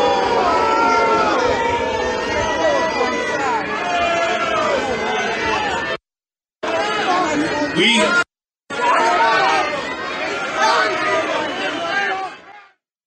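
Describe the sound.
A large crowd at a political rally roars with loud, overlapping shouts and chatter, a dense continuous wall of voices broken by two brief silent gaps before it cuts off, responding to a speaker calling for de-escalation of the violence after Israel was attacked.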